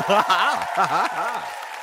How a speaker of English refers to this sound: Look at these little darlings, positively frozen by stage fright. Can we get a nice, warm round of applause for them?